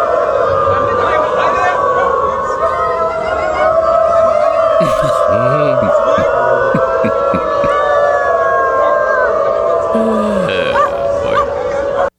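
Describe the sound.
Hundreds of Germans who identify as dogs, gathered in Berlin, howl and yip like dogs, voices rising and falling in sustained, overlapping wails that sound almost siren-like, loud and continuous throughout, with scattered barks breaking through.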